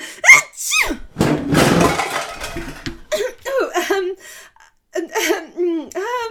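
A loud, noisy sneeze-like burst breaks out among a string of high, swooping vocal squeaks and grunts, with short pauses between the sounds, from a person with eight pipe cleaners stuck on their nose.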